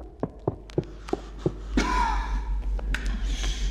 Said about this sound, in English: starting right off the bat with desperate running, heavy breathing, and coughing.